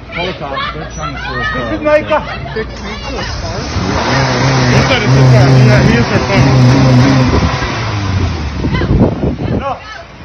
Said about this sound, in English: He shoots down the road for radio listeners. Crashes into a wall at about 7 miles an hour.